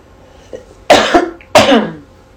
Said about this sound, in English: I have to cough between the smudge and the peppermint. I'm clearing things. So I'm going to kind of cover my mic and I'm going to clear here real quick.